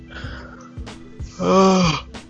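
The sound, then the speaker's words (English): A single long yawn: breathy inhaling that swells into a loud, drawn-out moaning vocal tone, then trails off into a soft exhale. No one speaks. “Sorry, I keep yawning.”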